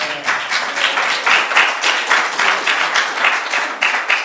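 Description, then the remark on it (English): A steady round of applause from a crowd, many hands clapping in a dense, continuous patter with slight swells, loud and sustained for a few seconds with no talking over it. “Now, good, that deserves a round of applause.”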